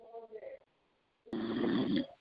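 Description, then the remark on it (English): Snoring comes through a thin, tinny phone line: a short rumbling breath, a brief pause, then a longer, louder rasping snore that ends abruptly. “Is somebody on the phone snoring for real?”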